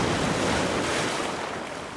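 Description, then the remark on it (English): Ocean waves only 2 to 3 feet high break on the shore at Quoddy Head State Park in Lubeck on a fairly calm day, a steady, loud roar of rushing surf, continuous, with a windy hiss over the top and no voices. “It sounds wild here today, but this is actually pretty calm. The waves are only 2 to 3 feet.”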